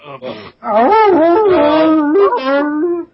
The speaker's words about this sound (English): Dogs.